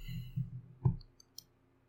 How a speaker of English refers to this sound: Oh, the name. Oh, I got it. I'm just bad at typing on my keyboard still.